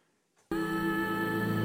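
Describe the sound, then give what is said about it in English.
A sound effect meant for snapping photos on a phone: after a brief silence, a loud, steady electronic buzzing tone with rich harmonics starts abruptly and holds unchanged to the end. No one speaks. “I've just never heard that as a sound for taking pictures on my phone.”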